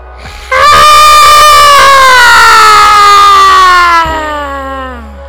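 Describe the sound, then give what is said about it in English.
A person, told to scream as loud as they can after a deep breath, lets out a loud, raw guttural scream that holds for several seconds, its pitch sagging slowly before it trails off into a fading, lower tail. “And I want you to scream, breathe. Breathe in one more time. Real deep breath. Guttural scream.”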